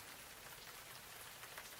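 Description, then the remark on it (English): Steady rain patters on a surface, a dense, continuous hiss of countless drops with no voices, fairly soft, holding an even level throughout. “I hope it never stops raining.”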